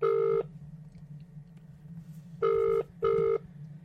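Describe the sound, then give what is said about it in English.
A phone line's ringback tone on an outgoing call purrs in short paired bursts, one pulse fading out, a two-second pause, then a double ring, heard clearly over a faint low hum. “We're now going to get onto the phone, get the Queensland perspective”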